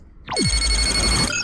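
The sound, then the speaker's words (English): An electronic hailing chime sounds once: a swift downward swoop into a steady, shimmering tone with high bell-like overtones, loud and alone, with no talking. “Captain, we are being hailed.”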